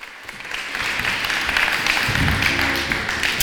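An audience applauds steadily, a dense patter of many hands clapping that swells quickly after a quiet start and holds loud for several seconds, with a faint murmur of voices underneath.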